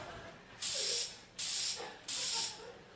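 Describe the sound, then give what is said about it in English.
Three short bursts of Exciting Hold hairspray hissing from an aerosol can as it is sprayed onto a person, each about half a second long with brief pauses between, fairly loud. “Did you spray this on me?”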